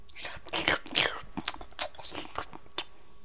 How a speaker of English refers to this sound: That was dogs eating. That's what my dog sounds like when he eats.